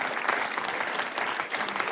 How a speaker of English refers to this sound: If you're from the community, big round of applause. Big shout out to you.